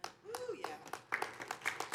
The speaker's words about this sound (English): That's a weak clap. We're not sure yet.